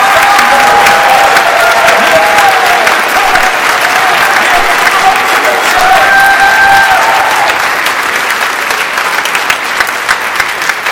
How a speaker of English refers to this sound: Jesus is worthy more than a half little clap. All right, if you're going to clap. All right, give Him praise.